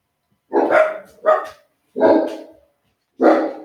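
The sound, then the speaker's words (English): Two pet dogs named Hansard and Gifford bark: four loud, separate barks with short pauses between them, the second one quick after the first, with no talking underneath. “My dogs apparently agree with me.”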